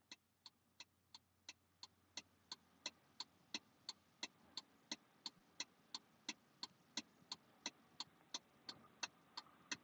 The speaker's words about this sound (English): Oh, and also for Mark, since he had some strong opinions about my hazard lights going on in my Pepsi truck while I'm working. Here's this for just about, 10 extra seconds for you.